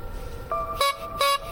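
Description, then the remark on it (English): A clown honks a clown horn twice in quick succession, two short, bright, squeaky toots, with no talking. “The clown honked the horn twice.”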